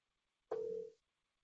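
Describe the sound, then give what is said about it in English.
A single short ringing tone of an outgoing phone call, a steady mid-pitched electronic beep lasting about half a second, loud, with silence before and after and no one talking. “High priority call. See if he answers.”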